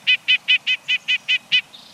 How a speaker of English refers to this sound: The nuthatch's insistent call matches its aggressiveness. These tough little guys will challenge birds larger than themselves for food and territory.